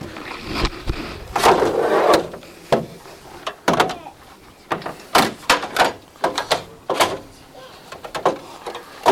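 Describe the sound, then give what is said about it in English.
A TV is shifted and dragged around so it is not right behind the speaker, with a series of sharp knocks, thumps and scraping rubs at irregular intervals, fairly loud. “I'm just going to move this so that it's not right behind me.”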